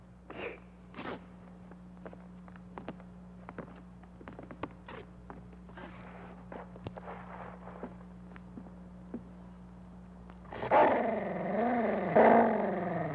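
After a stretch of quiet with scattered sharp clicks and pops, a scared dog suddenly lets out a loud, snarling growl that rises and wavers for a few seconds.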